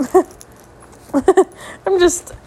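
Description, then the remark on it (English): A female dog with allergies coughs in three short, rough bursts, the middle one a quick double hack, with quiet pauses between and no talking. “My dog coughs.”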